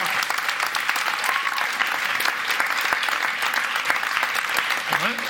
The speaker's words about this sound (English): That's great, isn't it? Let's applaud the Lord. Thank you.